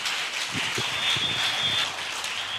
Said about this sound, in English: Bless the Lord with a clap offering. Bless the Lord.